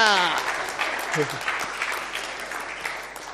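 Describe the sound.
A small group gives applause to a girl for answering a riddle, with steady, dense clapping filling the whole stretch. It is loud at first and eases slightly by the end, with a brief voiced whoop at the start and another short vocal sound partway through.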